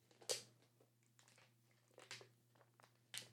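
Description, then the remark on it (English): Someone takes a few quiet sips of water, with soft wet slurping and swallowing noises spaced a second or so apart over a faint steady hum. No one speaks. “If you're on audio, all you heard probably was me just sipping on some water.”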